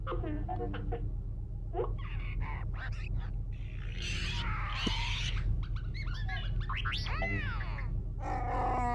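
A Wookiee roars angrily in a string of loud, growling howls that swoop up and down in pitch, with rough grunts between them over a steady low hum.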